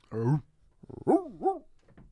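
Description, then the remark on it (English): A person imitates a dog barking with two or three voiced, pitch-sliding yelps and howls, fairly loud, with short pauses between them. “I think my bark's better than your bark.”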